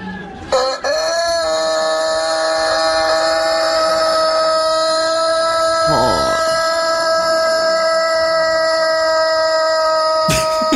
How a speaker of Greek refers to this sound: Ακούστε λιγάκι, σε ένα χωριό εκεί πέρα υπάρχει ένας κόκορας, ο οποίος είναι παιδιά κόκορας τενόρος. Έτσι, ακούστε λίγο πώς ξυπνάει το χωριό κάθε μέρα.